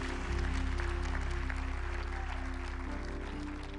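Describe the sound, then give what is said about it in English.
An audience claps steadily for everyone who prayed a prayer, a dense, sustained patter of applause that holds at a constant level throughout, with a low steady musical drone sounding underneath. “Can we give everyone who prayed that prayer just a round of applause real quick?”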